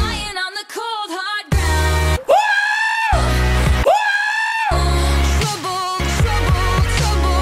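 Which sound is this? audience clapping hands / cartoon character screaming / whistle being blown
cartoon character screaming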